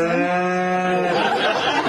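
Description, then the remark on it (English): A cow at an outdoor wedding ceremony moos once, a loud, drawn-out low call with a steady droning tone that trails off into a breathy, rough finish. “It's a beautiful outdoor wedding, but that cow is about to crash the ceremony.”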